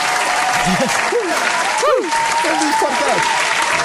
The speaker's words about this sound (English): Golf claps. Golf claps all around.